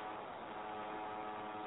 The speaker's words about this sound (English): Does anyone else hear that, or is that just me? Yeah, it sounds like a prop plane.